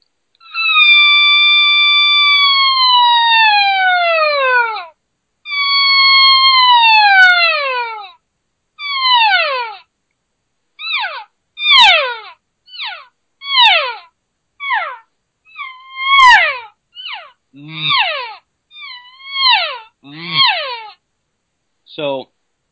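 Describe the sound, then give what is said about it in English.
A person's voice imitates an estrus cow call: two long, wavering, downward-sliding high calls, then a rapid series of shorter and shorter falling mews made with a G sound in the throat, some in doubles, ending in brief chirps. “Some doubles there, right, where you're doing that wavy kind of estrus cow call, and then a voice mew where you're just using the G sound in your throat to actually add another vibration range to that call.”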